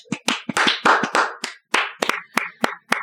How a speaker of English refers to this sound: And I hear a little bit of clapping at the other end of the room there. And by that, I mean out in Canada.